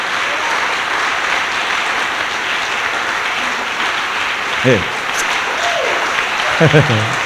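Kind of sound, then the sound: crowd, audience clapping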